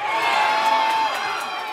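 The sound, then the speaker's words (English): A stadium crowd of football fans at a Los Angeles Rams versus Cincinnati Bengals game screams and cheers in a loud, sustained roar, with piercing high yells layered over a dense wash of voices that barely dips throughout. “football fans are incredibly loud”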